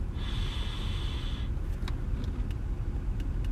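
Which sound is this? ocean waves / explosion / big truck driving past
big truck driving past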